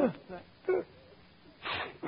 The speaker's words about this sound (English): Pardon me. Hello? Gesundheit. Well, thanks.